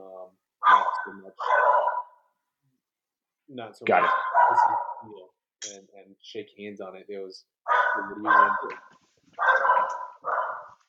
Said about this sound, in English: a dog is always just disrespectful to my guests. Every time somebody talks about something important, which is virtually everything.